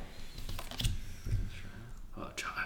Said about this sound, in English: And we get so we don't have enough, so should I just reshuffle the whole deck? Yeah, you draw the 5 you've got, and then you reshuffle and then you shuffle the discard and for, you, for the last one.